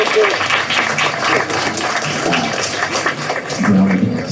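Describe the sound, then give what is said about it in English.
A crowd applauds the parents of a group of children steadily and loudly for several seconds, dense clapping with a few voices and cheers mixed in underneath. “So, a round of applause to the parents for raising great kids.”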